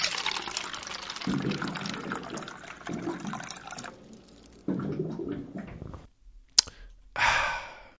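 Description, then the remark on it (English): A water cooler fills and gurgles in a few loud bubbling bursts separated by brief pauses, ending with a sharp click and a short airy gush. No one speaks. “If memory serves, it sounds like it's time for this week's water cooler fact.”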